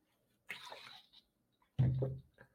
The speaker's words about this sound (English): Take a sip of water.